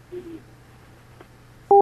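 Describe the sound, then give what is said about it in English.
A telephone line's disconnect tone after a phone call got disconnected: a low steady hum and a faint click, then one loud, short electronic two-tone beep right at the end. No one speaks. “we got disconnected somehow, and I hadn't gotten confirmation from you yet.”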